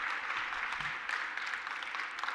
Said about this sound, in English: Yeah, y'all clap for him. Come on.